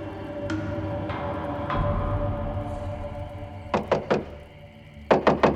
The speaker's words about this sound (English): I awoke the next morning to a violent knocking. When I opened the door